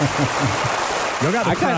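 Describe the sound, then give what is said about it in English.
A dense, steady wash of clapping fills the whole clip, with a voiced sound rising and falling over the applause toward the end. “I felt like I deserved the applause.”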